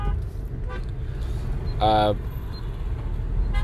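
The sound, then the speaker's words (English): A steady low rumble of road traffic, heard while stuck in traffic on the way to a meeting, with a single short car horn toot sounding midway through before the engine drone carries on. “But yeah, I mean, I'm stuck in traffic, so I figured I might record this right now while I'm on my way.”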